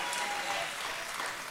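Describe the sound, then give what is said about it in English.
A church audience claps for three seconds in a dense, steady patter of overlapping hand claps, bright and textured, sustained without pause for the whole moment with no voices. “Somebody clap for three seconds so you it makes it feel a little better.”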